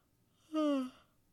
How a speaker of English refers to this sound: Did you know that yawns are thought to be contagious? That catching someone else's yawn is linked to empathy? It's a form of social mirroring.